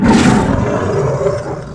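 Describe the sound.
A person lets out a loud, growling roar in imitation of a big cat. It's one sustained, raspy burst lasting nearly two seconds, forceful, with no other talking.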